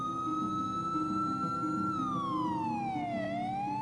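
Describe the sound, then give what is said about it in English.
Loud police sirens wail steadily as several police cars speed past going the other way, the pitch dropping sharply as they pass, with engine and road rumble underneath and no voices. “And as we leave, literally, these cop cars come screaming past us the other way.”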